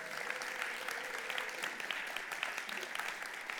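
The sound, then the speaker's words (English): An audience in a room applauds with steady, dense clapping that holds at an even level throughout, forming a continuous wash of hand claps with no voices standing out, welcoming a couple from the Wirral, Liverpool area who watch online every week. “Let's give them a round of applause and welcome.”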